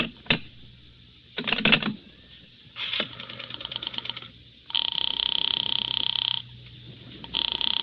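Telephone line sounds as a call is dialed to Sing Sing prison: sharp clicks and buzzy bursts, then long steady electronic tones that cut off and resume, fairly loud, with no voices.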